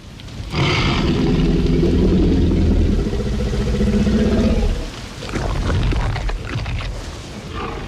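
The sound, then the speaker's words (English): A menacing growl of a hungry T-Rex from the film Jurassic Park: a deep, loud, rumbling roar swells in and holds for about four seconds, then drops off before a second, lower grumble rolls on to the end. No one speaks. “The menacing growl of a hungry T-Rex ushered in the dark side of gene tinkering in the film Jurassic Park.”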